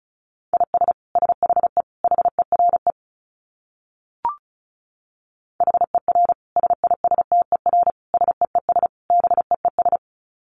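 Rapid Morse code at 35 words per minute: a steady mid-pitched beep keyed in quick dits and dahs, two runs separated by a silent gap broken by one sharp click.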